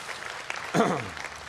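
A room of people claps steadily in a dense, crackling patter, with a brief vocal whoop rising over the applause midway through.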